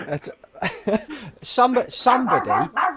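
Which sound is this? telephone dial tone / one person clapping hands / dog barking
dog barking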